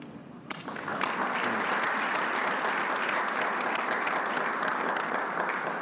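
A large audience bursts into sustained applause after a brief quieter moment, the dense clapping continuing steadily and loudly throughout with no voices standing out.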